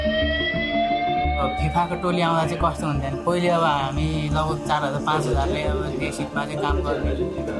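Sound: fire alarm ringing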